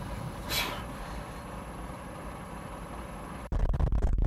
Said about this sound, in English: Truck.